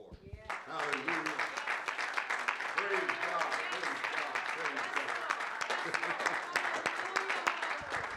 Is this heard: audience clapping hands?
yes